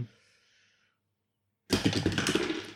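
After a stretch of near silence, several metal dice suddenly clatter and rattle across a table as a player rolls for a game check, a loud, bright burst of rapid irregular clicks that keeps tumbling for about a second.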